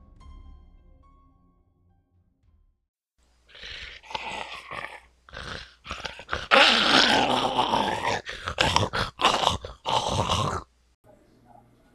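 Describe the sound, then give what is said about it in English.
A dog growls and snarls loudly in a tunnel, rising into harsh, broken bursts that build in intensity before fading out, with a quiet low hum before and after. “All of a sudden, we heard growling.”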